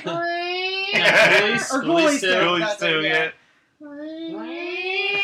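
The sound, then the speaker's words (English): A person imitates the noise a zombie cat creature makes as its head turns, a drawn-out, cat-like yowl, a wavering wail that rises in pitch. It comes once before a short burst of speech and again right after. “The noise it's making as its head turns. It's like the cat critter from Critters 2.”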